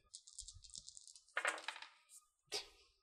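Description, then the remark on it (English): Dice clatter and rattle across a hard tabletop in a quick run, followed by two sharper clacks as they tumble and settle. No voices. “Thanks, Dice.”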